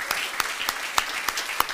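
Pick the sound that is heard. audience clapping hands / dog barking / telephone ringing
audience clapping hands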